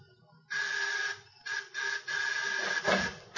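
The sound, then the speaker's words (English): Several electric doorbell buzzers of a building's tenants are rung in quick succession to get someone to press the door release, a harsh, steady mid-pitched drone that cuts in and out in uneven bursts, the final buzz running longest, with faint low murmuring underneath. “Ring two or three others, Gargoyle. I believe that's the usual technique for gaining admittance to these places.”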